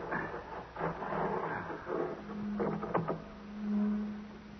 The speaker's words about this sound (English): Come on, what's that? Sounds like a motor of some kind.